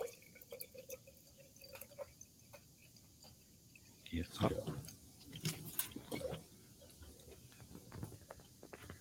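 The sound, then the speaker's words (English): Faint, irregular fizzing and crackling from a jar as an alkaline soil sample reacts with an acid solution: scattered tiny pops and ticks, with a brief louder wet, bubbly stretch in the middle before settling back to quiet crackles. “If you have an alkaline soil, it's going to start to bubble and fizz because it's reacting to the opposite pH in the jar.”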